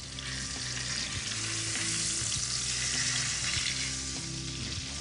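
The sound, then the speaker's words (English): Chicken with specks of parsley fries in a hot pan, a dense crackling sizzle that holds at an even, fairly loud level throughout, with a low hum underneath and no voices. “before that chicken starts getting bad, you can either one, freeze it, or just fry it up”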